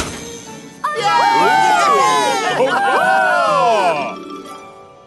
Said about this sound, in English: "That's a nutcracker, Thomas. They're meant to bring good luck," added Nia, at which the tree lights were switched on and everyone let out a big cheer.